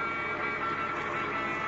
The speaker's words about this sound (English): Hey, that truck's coming close. Only it ain't a truck, Red. I can see it clearly now. It's a car. Yeah, here they come.